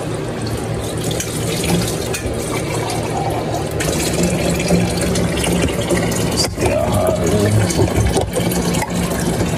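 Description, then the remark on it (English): Food sizzling in a pan, a steady loud hiss with scattered crackles and pops running throughout, with no voices over it. “You can hear it sizzling.”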